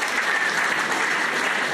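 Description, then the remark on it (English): An audience claps politely for two contestants after a close finish, a steady patter of many hands at an even, moderate level with no cheering or voices on top. “What a polite ball clap you guys just gave these two guys.”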